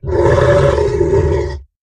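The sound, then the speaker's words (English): A deep, rumbling animal growl coming through the trees swells in loud and holds steady for about a second and a half, rough and throaty with a low roar-like texture, then cuts off abruptly. “Through the trees, from somewhere nearby, came a deep, rumbling growl.”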